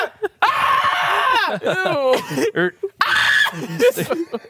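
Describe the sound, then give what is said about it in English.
A person role-playing lets out loud, shrill screeching with their voice at a lizard, two long sustained bursts with wavering pitch, separated by shorter yelps and vocal noises, forceful. “I start screeching really loud.”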